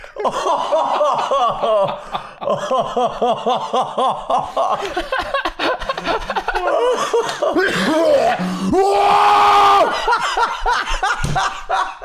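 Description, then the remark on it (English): A loud fit of coughing tangled with wheezy laughter, rapid repeated bursts that build into a harsh, strained hack near the end. “Fuck this cough.”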